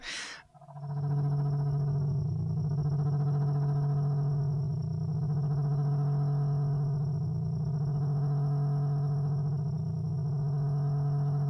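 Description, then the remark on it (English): Therapeutic frequency tones said to stimulate very specific parts of the brain: a steady, sustained electronic drone built from stacked harmonic tones, with a slow pulsing wobble rising and falling every couple of seconds, after a brief noisy burst at the start. “So the premise here with these sounds and what they say that the science of this is doing is that it's stimulating very specific parts of the brain”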